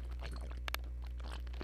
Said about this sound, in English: And on that note, I'm going to drink it before I tell you what it is. Drinking my coffee first sip of the podcast.